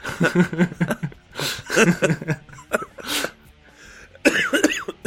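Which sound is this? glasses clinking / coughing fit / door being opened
coughing fit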